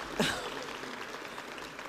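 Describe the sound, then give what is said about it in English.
An audience claps steadily at the 39th Annual Madison-Dane County King Holiday event, a dense crackling wash of applause that holds for a couple of seconds, with a brief voice or cheer rising near the start. “And I just want to tell you really quickly, I wasn't expecting applause.”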